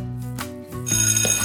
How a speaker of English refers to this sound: The bell rang for recess and everyone ran outside to play.